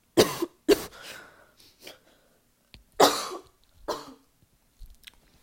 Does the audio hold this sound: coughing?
yes